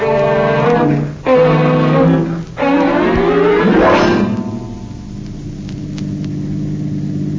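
A car engine revs up steadily through several gear shifts as the car is driven, with brief dips between each climb, then settles into a lower, steady running hum. The engine is fairly loud, with no voices.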